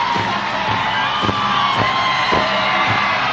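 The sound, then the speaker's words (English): A huge capacity crowd at a World Wrestling Federation event roars and cheers continuously for Hulk Hogan as he goes around the ring, with whoops and yells rising above the dense wall of noise and a few rhythmic thumps pulsing underneath. “Spellbinding this capacity crowd.”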